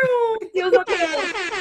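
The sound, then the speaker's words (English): A voice mimics a blaring air horn: a few loud, brassy, prominent honks with a wavering, vibrato-like tail. “air horns.”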